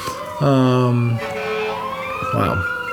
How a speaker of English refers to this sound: wow, there's something going on outside, guys. There's lots of sirens. Hopefully everyone's okay.